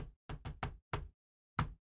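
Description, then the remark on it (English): Six sharp, fairly loud knocks on a hollow-sounding door set in the middle of a floor: a quick run of four, another after a short pause, then a final knock after a longer gap. No talking. “If I knock in, it's like this.”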